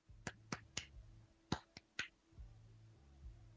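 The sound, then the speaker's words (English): Sharp, crisp claps, part of a music video's song, beat out two quick groups of three over a low, droning bass line, with no voices. “A, because I like the clap soundtrack it has in it. You can hear it.”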